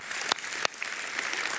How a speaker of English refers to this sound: Can we give those families just a round of applause? Yeah.